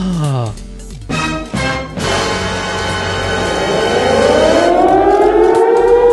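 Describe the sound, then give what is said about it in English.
A loud, wailing alarm siren with layered tones, sounding continuously for several seconds as its pitch sweeps slowly upward. “Sound the alarm.”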